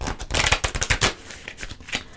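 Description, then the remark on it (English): Oracle cards being shuffled, a quick run of crisp riffling flutters in the first second, then a few softer, scattered slaps and rustles as the deck settles. No one speaks. “I have a couple more shuffles here.”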